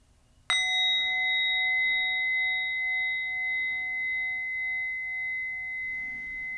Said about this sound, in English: Now we'll end this meditation by inviting the bell, and I invite you to take 3 deep breaths.